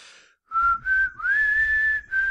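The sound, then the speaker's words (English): A short whistled video game theme melody, Proto Man's theme, clear, moving through a few sustained notes that step upward with brief breaks between phrases, over a faint low rumble and no talking. “I think Proto Man could use a remix of his theme, especially like that whistle.”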